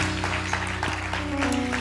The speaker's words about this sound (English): Let's honor the Lord with a hand clap.